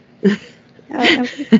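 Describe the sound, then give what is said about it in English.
A single loud sneeze bursts out, a sharp breathy blast with a brief vocal edge, bracketed by short voiced sounds just before and after. “Bless you.”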